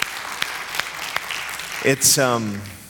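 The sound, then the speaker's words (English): Audience applause forms a steady, hissy wash, with a few sharper claps standing out at an even pace. Near the end it thins as a voice speaks over it. “Shall we just applaud?”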